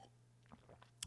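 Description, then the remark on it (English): A quiet sip of coffee: a few soft mouth noises over a low steady hum, then a brief louder slurp at the very end. “Sip of coffee and let's have a quick prayer.”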